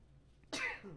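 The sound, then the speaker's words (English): One sharp sneeze bursts out after a brief quiet lead-in, a loud, hissy explosive blast that trails off into a short voiced tail. “Yeah. Bless you.”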